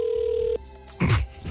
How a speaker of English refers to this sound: Well, it's ringing.